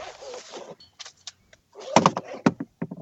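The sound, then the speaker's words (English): Sounds of a man climbing out of his car after recording while driving: a rush of rustling, a few sharp clicks, then a cluster of loud thumps and rattles like a door opening and shutting. No one speaks. “Chris is getting out of his car, I guess.”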